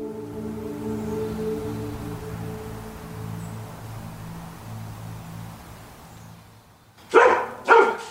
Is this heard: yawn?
no